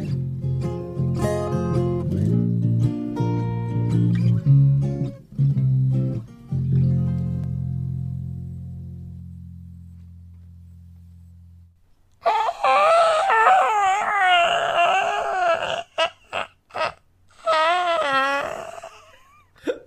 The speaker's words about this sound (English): That, of course, is the sound of the door opening on the bunker full of spoilers. Quite a sticky door. The sound of a witch dying at the end of a long, narrow tunnel. That's what it sounded like to me. Incorrect. It was a door opening.